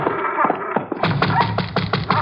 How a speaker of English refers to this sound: It's open, Ma. What are you knocking for?